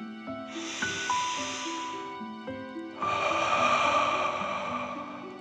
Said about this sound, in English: Breathe in through your nose and then out through your mouth, pretending you are breathing fire. Deep breath in and out.